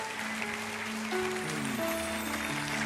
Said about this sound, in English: Would you clap your hands all over the house here right now?